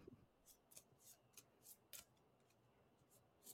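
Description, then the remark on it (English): A deck of tarot cards being shuffled, heard as a quick series of soft, papery snaps and riffles repeating every half second or so, quiet, with no talking. “I'm shuffling right cards.”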